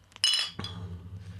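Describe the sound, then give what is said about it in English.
Glasses of Polestar Pilsner beer from Left Hand Brewing Company clink together in a toast, a quick pair of bright, ringing chimes, followed by a dull thunk as a glass is set down over a low background hum. “Cheers, guys. Cheers.”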